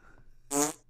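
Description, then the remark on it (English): A single short fart sound effect played from a soundboard, about half a second long, loud and buzzy with a rasping tone, following a brief quiet moment with no talking. “I don't like fart gags. I really don't.”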